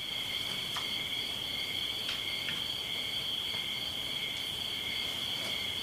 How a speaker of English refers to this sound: If that's possible, listening to the crickets, what else is possible?